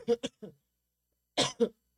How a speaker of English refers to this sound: Not coughing for 45 minutes.